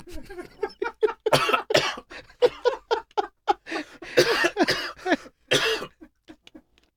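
Someone coughs and sputters in a long run of harsh, irregular bursts after choking while swallowing water, with a few breathy, laugh-like gasps mixed in before it trails off.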